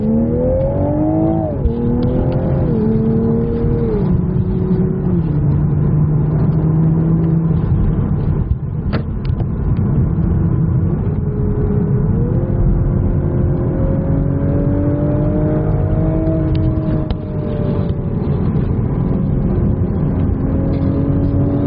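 A 2022 Toyota GR Supra sports car engine revs hard and accelerates through several gears, its loud roar rising in pitch, dropping at each shift, then climbing again, with no talking.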